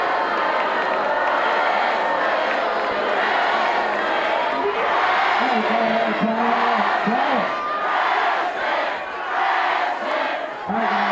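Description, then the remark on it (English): A large crowd at a camp roars and cheers with sustained clapping to welcome the freshmen, a dense, loud wall of noise lasting throughout, with individual shouts and whoops rising above the din. “We have a lot of new faces here at camp, so I'd like to take this opportunity to welcome all the freshmen here to camp. Give them a round of applause.”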